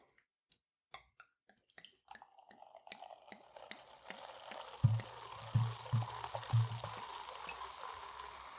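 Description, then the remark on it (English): Champagne poured into a glass: a few light clinks, then a steady fizzing hiss that builds, with several soft glugging pulses near the end. No talking. “I'm pouring this wine now.”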